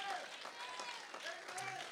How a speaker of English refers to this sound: Come on, somebody give God a hand clap of praise.